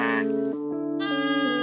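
A sheep bleats in one long, wavering cry that rises in brightness toward the end, fairly loud, with no other sounds around it.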